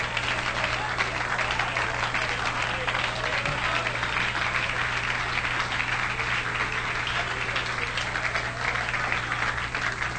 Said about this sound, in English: Oh, come on, clap your hands to the Lord.